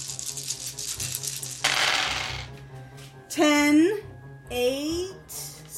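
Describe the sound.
A dense clatter of 15 dice, rolled for weapon damage in a game, rattling and tumbling across a hard surface, with a sharp burst of scattering clicks, followed by voices reacting loudly.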